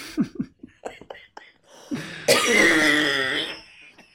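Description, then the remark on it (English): A woman who is feeling unwell gives several short, muffled coughs in quick succession, then a loud, raspy fit of coughing and throat clearing that lasts over a second, with no talking. “Who's not feeling super great, so she's... Ignoring coughs.”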